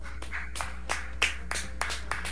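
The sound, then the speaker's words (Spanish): A few people clap in a loose, uneven patter of sharp, bright claps spread over a couple of seconds, moderately loud with a low steady hum underneath and no talking. “Acá, miren, volvieron los que aplauden.”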